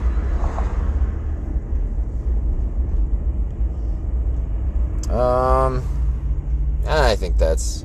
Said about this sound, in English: I am still driving for another 6 minutes here or so. So, maybe something will come to mind. Motherfucking traffic.